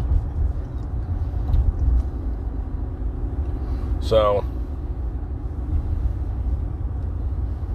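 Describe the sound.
Steady low rumble of road and engine noise inside a truck cab, droning throughout, with a man's brief spoken word cutting in partway through.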